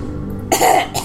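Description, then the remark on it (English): A harsh, raspy cough and throat-clearing hack, one longer rough burst followed by a shorter one, after a brief quiet moment. “Cough. Hack. Cough. Hack. Wheeze.”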